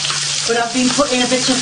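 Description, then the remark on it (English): A slice of bread sizzles steadily in hot fat in a pan, a dense crackling hiss that holds fairly loud throughout, with faint tonal hums underneath. “Ooh, I'm just to let you I'm know, having a fried slice now, I'm tonight. I haven't been showing you, but I've been putting a bit of fat in every time.”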